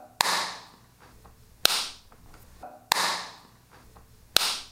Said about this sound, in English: I'm going to show you just the claps so you can hear it back to back.